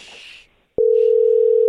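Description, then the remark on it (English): A brief burst of hiss fades to a moment of silence, then a loud, steady single-pitched tone of a call being placed to a cell phone starts abruptly and holds without a break. No one speaks. “We're going to call your cell right now”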